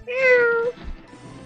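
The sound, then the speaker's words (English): A single drawn-out cat meow, clear, lasting just over half a second with a slightly falling pitch, followed by quiet low rustling. “They hear thunder, rumbling, and cat scratching, but they didn't see any cats.”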